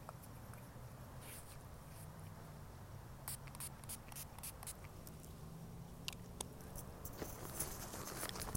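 Germex hand sanitizer is sprayed onto hands in a series of short, soft hissing bursts with light rubbing and patter, fairly quiet, with no one talking.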